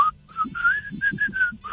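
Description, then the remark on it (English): A man whistles a short melodic run of about six sustained, gliding notes, the fade-out ending of a song, with soft breathy puffs underneath and no talking. “He whistles with an accent.”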